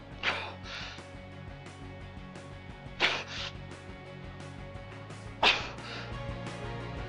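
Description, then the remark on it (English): Three sharp, forceful breath bursts, each a quick hissing huff, come roughly every two and a half seconds, the strained breathing of someone under high G-force of 4.5 G, over a steady low drone. “And here comes the weird breathing.”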